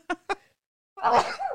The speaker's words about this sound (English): Uh-oh, here they come. Uh-oh. Allergies. Sneezing is not part of the Rona symptoms.